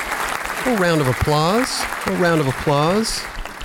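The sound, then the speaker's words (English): Steady crowd clapping fills the background while voices let out four loud, drawn-out whooping cheers that rise and fall in pitch. “A round of applause.”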